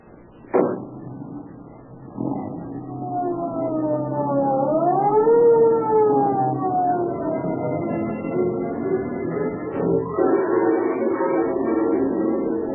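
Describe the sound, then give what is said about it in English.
A police car siren wails loudly, its pitch rising and falling in slow sweeps over a rumbling engine, with a sharp thump near the start. No one speaks. “Although the police car starts its journey with sirens screaming,”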